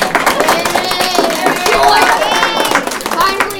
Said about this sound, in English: You guys should have waited to clap to see how long it was. But we'll see.